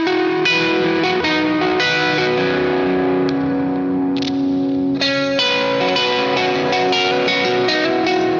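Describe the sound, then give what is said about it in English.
Electric guitar with a drive effect switched on and a humbucker tone plays sustained, heavily driven chords with a thick, saturated sound and some reverb, ringing loudly and steadily with a few fresh strums and no voices. “So I've actually thought about how good that would sound, and to actually like make that work, I would need some drive in there. So I'll turn some drive on.”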